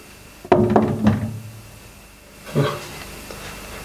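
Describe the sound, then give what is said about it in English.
A few dull, wooden knocks on a door in quick succession, then a pause and one more thud, with quiet background and no talking. “I had someone knocking at the door.”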